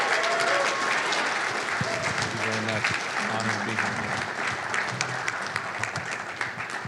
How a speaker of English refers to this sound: So can you welcome him? Give him like the biggest round of applause you've ever given somebody. Come on.